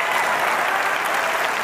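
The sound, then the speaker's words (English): A show audience breaks into steady applause for a guest, many hands clapping together in a dense, continuous wash of sound that stays loud and even throughout. “Let's clap it up for this pioneer.”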